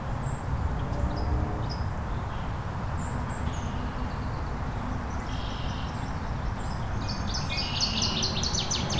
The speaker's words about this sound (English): I don't see the water thrush, but that was very clear.